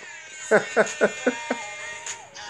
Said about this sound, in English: Stop the air horn.